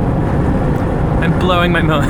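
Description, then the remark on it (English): Steady low rumble of a car interior on the move fills the whole stretch, and a person starts speaking over it in the last half second. “I'm blowing my own mind here in the podcast recording car”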